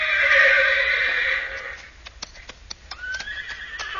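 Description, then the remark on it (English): A horse named Thunder neighs loudly in a long, high, quavering whinny, then fades into a series of sharp hoof clip-clops with a softer follow-up whinny underneath. “What's the matter, Thunder? Oh, boy. Stone in your hoof?”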